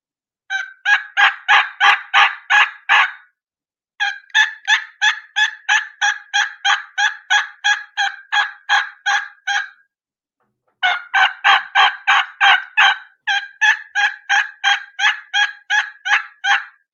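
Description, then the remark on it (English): Imitated turkey hen yelps voicing two different hens in sequence, loud, come in three rapid rhythmic runs separated by short pauses, a raspier series and then a clearer, higher-pitched one with the rasp taken out, with no talking. “So I'm going to do the two different hens side by side in sequence so you can hear the differences.”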